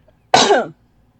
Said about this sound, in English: Hold on, I have to cough.